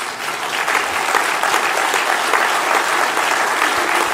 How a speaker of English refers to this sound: Did you guys hear that one clap at the very beginning? That was Hitler. Hitler got the applause going.